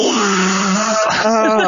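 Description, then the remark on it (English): A voice lets out a long, loud, groaning trumpet-like moan in imitation of a dying elephant, sustained and wavering, then breaking into a rising, strained wail near the end. “make the dying elephant sound, and we can't have any episode without that.”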